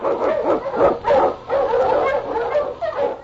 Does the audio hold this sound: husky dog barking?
yes